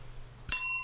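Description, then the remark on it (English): A single bright bell sound effect, an original recording, rings sharply after a brief quiet hum. Its metallic tone sustains clearly and loudly, with no voices present. “I hope that bell sound effect is out of copyright.”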